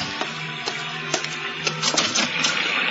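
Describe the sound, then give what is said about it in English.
Someone bangs on a front door at about 3 o'clock during a rainy night, in a string of sharp, irregular knocks, roughly half a second apart and crowding together toward the end, over a steady background hum with no voices. “It was about 3 o'clock when I heard the banging on the front door.”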